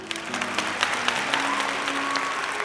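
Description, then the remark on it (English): A steady patter of crowd applause for a bard at the Cottage Rest Inn, many hands clapping at once in a dense, even wash, with a faint sustained musical tone humming underneath. “What a splendid crowd y'all have been.”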